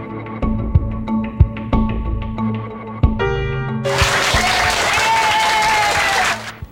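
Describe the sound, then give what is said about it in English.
After a few seconds of steady, tonal music, a crowd of reporters breaks into loud, sustained applause with cheering voices as FBI agent Edmundo Morales is wheeled out of South Miami Hospital, filling the last few seconds before cutting off. “A crowd of reporters awaits. He's greeted with cheers.”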